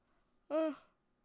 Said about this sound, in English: Oh, sorry, I'm yawning.